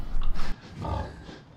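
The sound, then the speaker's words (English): A hog grunts in a motel room: a short burst of rough snorting noise, then a deeper, drawn-out grunt that fades away. No one speaks. “Why is there a hog in your motel room?”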